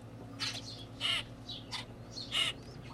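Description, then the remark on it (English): A hungry baby grackle gives a run of harsh, raspy begging calls, about five short squawks at uneven intervals, over a faint steady background hum. “A baby grackle. See how bright red his mouth is? And he's very talkative.”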